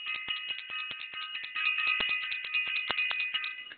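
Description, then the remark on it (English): A bell rings rapidly and continuously, its bright metallic tones sustained under a steady stream of quick strikes for several seconds, with no one speaking. “I want to ring the bell.”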